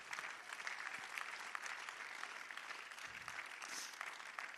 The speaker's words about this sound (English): Clap your hands one more time to the Lord.